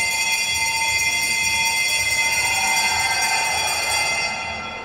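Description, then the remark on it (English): A bell rings continuously for nearly five seconds, a loud, steady, rapidly pulsing metallic ring with bright overtones, fading slightly just before it stops. No voices are heard. “was not Warnie. Was a bell ringing. That's how you ring a bell.”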